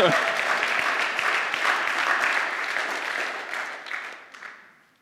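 An audience claps in a dense, steady burst of many hands that holds for several seconds, then thins out and fades to a few scattered claps.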